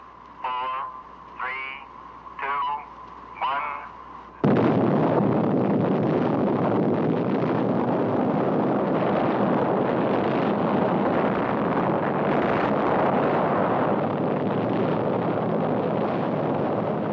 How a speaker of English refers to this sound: Watched from a safe distance, this explosion is one of the most beautiful sights ever seen by man. This Army training film from 1955 shows the brilliant light and terrifying mushroom cloud of an atomic detonation at Frenchman's Flat, Nevada.